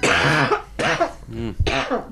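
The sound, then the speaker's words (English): A person coughs four times in quick succession, each burst harsh, with a voiced, throaty edge and short pauses between them. “I was with the coughing,”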